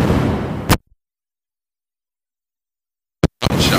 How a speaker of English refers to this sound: Did you hear that? Just a strange... I don't know what the fuck happened there, man. It sounded like some fucking gunshots.